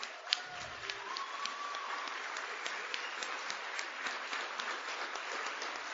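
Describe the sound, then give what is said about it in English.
A crowd applauds steadily, a dense, even wash of many hands clapping at once that holds at a constant level for the whole stretch, with a few sharper individual claps standing out near the start. “So round of applause for you guys, for keeping me sober today.”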